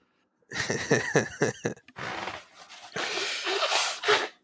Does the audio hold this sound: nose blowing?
yes